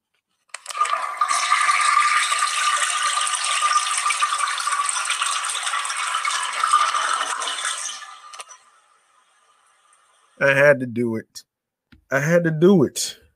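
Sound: toilet flushing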